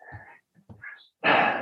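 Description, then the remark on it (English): A pet dog growls at its owner, letting out a few short, rough, breathy growls and ending in one louder, harsher rumble that cuts off abruptly. No one speaks. “My dog just growled at me after I said that.”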